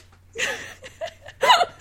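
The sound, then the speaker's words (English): A person makes quick, breathy nasal snorts and sniffs in a loose rhythm, imitating a snare drum with their nose. The bursts are fairly loud, with brief pauses between them. “I played the snare percussion with my nostrils.”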